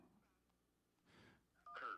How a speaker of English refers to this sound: Oh, we're getting a phone call here. Here we go. Let's see.